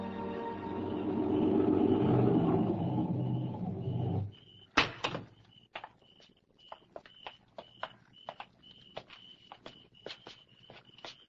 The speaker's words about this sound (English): Greetings. I heard you drive up. Come in.